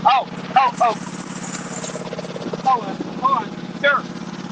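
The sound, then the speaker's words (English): A lawn mower engine drones steadily outside at a low, buzzing pitch throughout as a lawn is mowed, with short bursts of voices breaking in over the constant hum. “We're going to take a short break while the lawn mowing takes place.”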